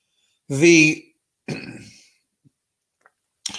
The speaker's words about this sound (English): But, excuse me, couldn't hit the cough button soon enough.